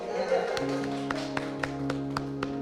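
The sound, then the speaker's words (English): Slow, evenly spaced clapping from an audience at a talk, about six sharp claps in a steady rhythm, sounding over a sustained low humming tone. “Oh yeah, you've got to clap.”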